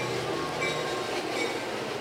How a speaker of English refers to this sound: Oh, we have a train coming in. Here's the train. This is a... It sounds like an express with the clanking of the bell.